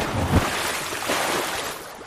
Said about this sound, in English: And as you see her feet disappearing, you see long black fins like morph out of the space where her feet were before you hear a splash in the water.